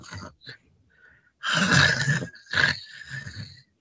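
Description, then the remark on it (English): A person imitates snoring with loud, rasping, throaty snorts: a couple of short grunts, then a long harsh inhaled snore and two more rumbling snores, alone without speech. “I'm just fake snoring because American Horror Story is a fantastic show.”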